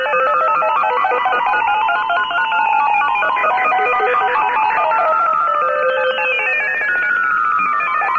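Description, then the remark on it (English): Line 5 of a radio phone-in rings with a bright electronic warbling tone that sounds loud, repeating steadily for several seconds with no one speaking. “Look, line 5 is ringing.”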